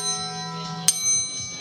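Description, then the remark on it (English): A small metal bell, the cap of a tequila bottle that also serves as a shot glass, rings with a bright, lingering tone, then is struck again once partway through, the sharp ding fading into a sustained shimmer. No one speaks. “I love how the cap turns into, not only is it a shot glass, but it is a bell.”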